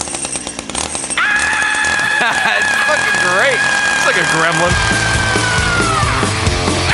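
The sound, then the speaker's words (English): Loud, heavily distorted heavy metal guitar riffs grind along, with a long sustained squealing note held over chugging low chords, while people talk over the music. “Dude, aren't these riffs fucking awesome?”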